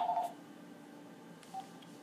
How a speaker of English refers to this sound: Hold on. We have a phone call coming in. Who could this be?